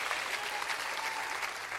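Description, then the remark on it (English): An audience claps their hands together, a dense, steady wash of many hands slapping at once, sustained and fairly loud throughout with no voices standing out. “Come on, clap your hands and rejoice to the fact that He is the same in our life today.”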